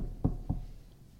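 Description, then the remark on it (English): Two dull knocks on a door in quick succession, about a quarter second apart, against a quiet, faintly humming background with no one speaking. “Remember, he's knocking.”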